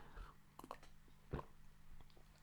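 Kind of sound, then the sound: food or drink, sipping coffee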